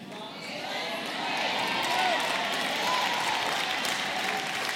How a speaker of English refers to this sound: Look at your neighbor who didn't clap and say, you must start clapping now. Just tell them, you must start clapping now. Tell them, you must start clapping now.